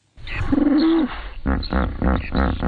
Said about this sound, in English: Until now, the function of the most common hippo calls, known as wheeze honks, had been a mystery.